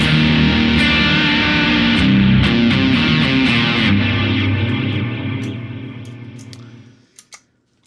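A loud electric guitar, overdriven through a Noble Screamer pedal with Halo and Echoes pedals added, plays thick sustained chords with rhythmic picked accents, its echoes trailing and fading out near the end before two brief final plucks.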